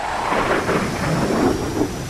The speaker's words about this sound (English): Hey, a jet's coming in for a landing now.